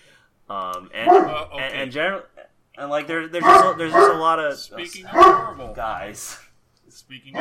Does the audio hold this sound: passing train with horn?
no